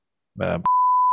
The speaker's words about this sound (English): Which we have to keep bleeping, I guess.